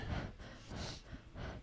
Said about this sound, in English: I think so. Well, then don't. Why would you breathe into the microphone?